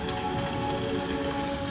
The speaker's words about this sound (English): I've been wanting to go out and kind of explore the little woods behind the house, but it's been raining since I got here.